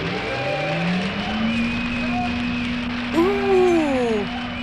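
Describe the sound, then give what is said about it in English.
An air conditioner switches on: a low motor hum rises in pitch and settles into a steady drone under a constant hissing rush of air, with a brief swooping higher tone near the end. “Get ready for something called air conditioning!”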